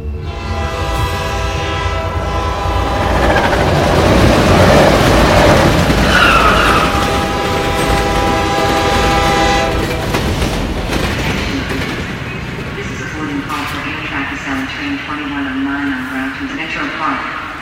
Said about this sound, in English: So I'm recording this from the train again.